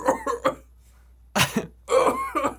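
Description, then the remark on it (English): A person imitates coughing with a few quick rough bursts, a pause, then a longer burst of fake coughs, fairly loud. “All you're going to hear is us coughing in the background.”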